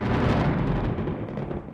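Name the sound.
thunder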